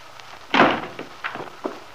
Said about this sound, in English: letting himself in noisily and slamming the door after him.